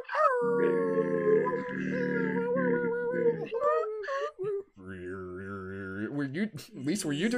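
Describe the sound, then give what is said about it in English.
During a live broadcast, a participant on an unmuted microphone drones in long, buzzy tones rich with overtones, like throat singing, shifting pitch in a few sustained phrases, then breaks into rising and falling wolf-like howls. “some like what is it, Mongolian throat singing?”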